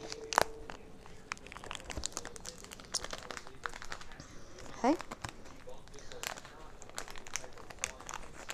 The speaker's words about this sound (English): They come in these individual bags here. So I'm gonna pop one open here.